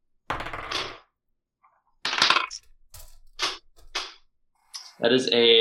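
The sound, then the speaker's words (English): Dice clatter across a hard surface in several quick bursts, clicking and knocking against other dice, fairly loud; the rolled die runs into the other dice and does not complete its full roll. A voice begins speaking at the very end. “Well, it did hit my other dice. It didn't do its full roll.”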